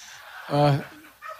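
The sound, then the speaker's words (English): A turkey, one of two visiting Washington, lets out one short, loud, warbling gobble in the middle, with faint rustling and a softer call near the end. “Yes, instead of getting basted, these two turkeys are getting boosted.”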